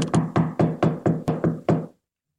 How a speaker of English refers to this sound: She must be out. The door's locked. Knock again, if you don't mind. She might be sleeping.